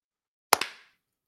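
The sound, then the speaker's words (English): Two sharp hand claps by two people trying to clap together on a count of three, landing a split second apart, slightly out of sync, followed by a short fading ring, with silence before and after and no talking. “We gotta do our clap real quick.”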